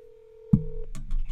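A steady, moderately loud telephone line tone hums for most of a second, then a thump and a lower buzzing tone cut in, followed by scattered clicks and line noise, as a phone line is redialed after a dropped call.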